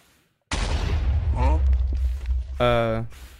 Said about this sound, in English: I think a glow squid spawned and then exploded. That explosion might kill the snowman.